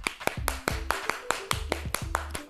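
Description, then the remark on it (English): A steady run of about a dozen sharp hand claps in a quick, even rhythm, clapping for listeners starting spring break, with a low humming tone underneath. No one speaks. “Clapping it up for you this morning.”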